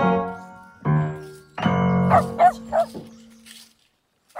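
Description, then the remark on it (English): A dog lets out a quick run of three or so sharp barks over ringing piano chords, then the music fades toward quiet. “But you see, I talk to the dogs all the time, the two lads.”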